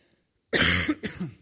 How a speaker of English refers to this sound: Honestly, now I'm starting coughing, and I want you to honestly know I'm taking that very seriously, and I'm not just going to take light of this. This wasn't here half an hour ago, and so this is serious.